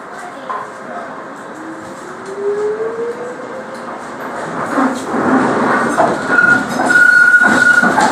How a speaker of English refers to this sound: This train is for Stratford. The next stop is West India Quay.